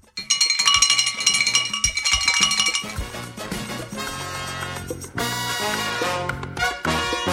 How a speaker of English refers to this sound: Ah, the bell.